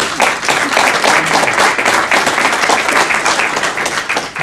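An audience breaks into a sustained round of applause, dense overlapping claps forming a loud, steady wash of sound for several seconds without pause.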